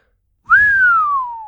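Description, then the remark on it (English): A single human whistle rises sharply, then glides slowly downward in pitch for about a second, clear and fairly loud with no speech around it. “Zeta whistled.”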